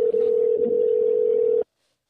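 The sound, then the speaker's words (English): A single steady telephone ringing tone of an outgoing phone call, loud and clear, holds for about a second and a half over faint background noise, then cuts off abruptly into silence. “If he doesn't answer, I'm calling”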